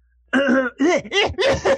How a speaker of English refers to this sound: So I'm gonna clear my throat.